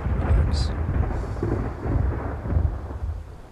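Deep, continuous thunder rolls through the whole stretch during a lightning storm, a heavy low rumble that swells and fades in waves, with a hint of rain hiss above it and no voices.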